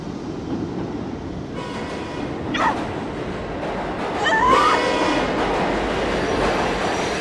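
A train rolls steadily along the rails with a constant rumble, broken by a couple of brief, high metallic squeals from the wheels. No one speaks.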